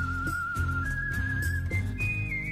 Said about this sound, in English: We need to get the best news music going around. …, come on in.